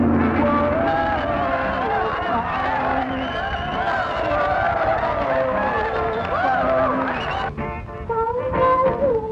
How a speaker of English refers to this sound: It just keeps cutting back to this stoic audience, pointedly not reacting. As the crowd goes wild on the speakers. Yeah. They're cheering and whooping with their mouths shut.